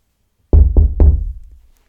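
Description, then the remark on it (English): Three firm knocks on a wooden door in quick, even succession, loud, with a short resonant decay after the last one and no voices. “Listen, I'm standing at the door knocking.”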